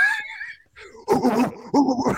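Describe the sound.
A person mimics a dog, starting with a high whiny yelp, then letting out a couple of gruff, rapid barks, fairly loud.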